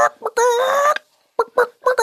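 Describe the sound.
A woman imitates a chicken clucking to call a man a chicken: a short cluck, a long drawn-out squawk, a pause, then a quick burst of choppy, loud clucks.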